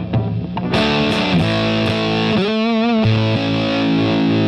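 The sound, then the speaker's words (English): A crunchy, distorted electric guitar played through an effects pedal turned up to about 3 o'clock, with the guitar's volume control brought down and then up: sustained gritty chords, a few sharp pick attacks and a wavering, warbling bend in the middle, loud and continuous without any talking. “I'll do like a cool, weird, crunchy.”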